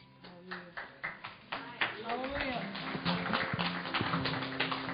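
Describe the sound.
An audience applauds, beginning with a few distinct claps that quickly build into steady, dense clapping, with voices and some tonal sound mixed underneath.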